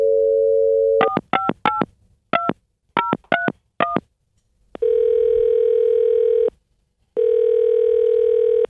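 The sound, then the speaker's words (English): A steady dial tone gives way to a quick string of beeping keypad tones, followed by two long, loud ringing tones on the line with a pause between them, as a phone call is placed to a grandfather on his 104th birthday. “So let's get him on the phone this morning.”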